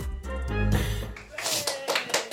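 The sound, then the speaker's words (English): A small round of applause: a few scattered handclaps in a brief, uneven burst, following a moment of voices at the start. “Oh, round of applause.”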